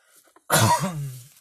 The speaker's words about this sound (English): So one is I have allergies and stuff, and so I'm coughing a lot and stuff, and that doesn't sound good in an episode.